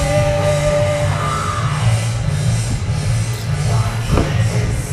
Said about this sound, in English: There's the … scream right here. I hear it.